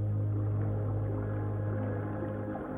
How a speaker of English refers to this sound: The sound is beautiful in itself, but the enigmatic nature of the whale's song makes it even more fascinating. Scientists still don't know exactly why humpback whales sing, or why they create such lengthy, complex structures.